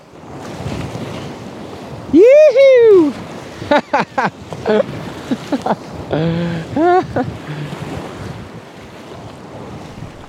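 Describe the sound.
Steady rushing, splashing whitewater from river rapids being run by kayak fills the whole recording, loud, with water slamming overhead, while a person lets out an excited whooping shout and more cheering calls break through the roar.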